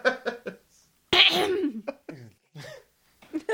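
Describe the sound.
Someone clears their throat repeatedly: a few quick short grunts, then a louder, harsh rasping clear, followed by a few softer voiced bursts.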